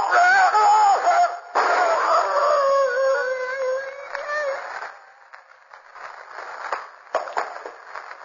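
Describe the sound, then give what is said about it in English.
A wolf howls loudly, long wavering cries with overlapping voices for about five seconds, then the sound drops away into quieter scattered noises and a few faint bumps. “The wolf's coming for me.”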